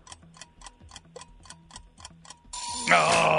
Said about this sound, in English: There's the buzzer.